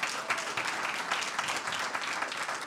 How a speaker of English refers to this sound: And that, yes, you should clap.